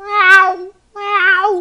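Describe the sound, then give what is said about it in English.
A voice imitates a frightened cat, a neighbour's cat panicking after getting into an unfamiliar apartment, letting out two loud, strained meows in quick succession with a brief pause between them. No other talk is heard. “And he was freaking out. He was like, meow!”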